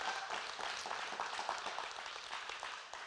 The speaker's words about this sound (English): I didn't say that. I guess I gave enough pause right there. I didn't say that for a hand clap, but thank you.